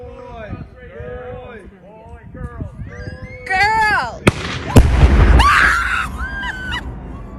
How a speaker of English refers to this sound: just listen to how loud this explosion is from this from video on Facebook